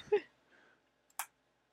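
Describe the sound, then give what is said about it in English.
A quiet murmur of a voice, then a brief pause and a sharp pen click, preceded by a faint tick, as someone clicks a pen to find one that works. “Need to find a pen that works.”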